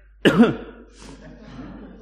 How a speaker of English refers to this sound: It's like, I can't shift this chesty cough.